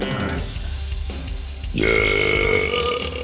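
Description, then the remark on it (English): A single long, loud burp that swells into a drawn-out, rumbling belch, lasting a couple of seconds with no talking. “Let me give you, I have to burp, so hold on.”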